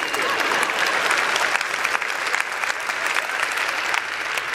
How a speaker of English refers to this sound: Y'all can clap.